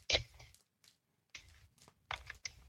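Playing cards being shuffled in several quick bursts of crisp, papery flutter and snapping, separated by short pauses. The sound is fairly quiet, with no talking.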